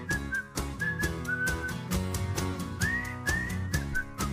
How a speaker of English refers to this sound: I'm going to try to whistle along because it'd be a catastrophe.